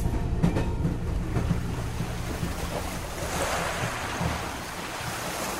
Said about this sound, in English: The journey began with a few nights exploring Venice, where the lagoon's chorus of gentle, flapping waves set the tempo for the train's slow, rolling trundle.